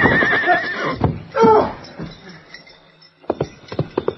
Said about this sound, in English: Come on, boy. He rode hard, and that was poor judgment when the ground was studded with gopher holes and other irregularities, and the only light came from a thin new moon. Get up. His horse tripped and fell.